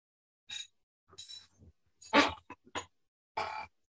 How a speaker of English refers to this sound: I had a burp stuck really deep down in there.